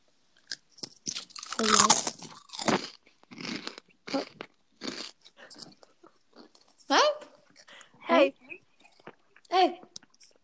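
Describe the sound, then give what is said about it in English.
Crisp crunching of veggie straws being bitten and chewed, a burst of loud crackly bites followed by several separate crunches spaced about a second apart, with no talking. “Is it a nice crunch? Not really. Do it again.”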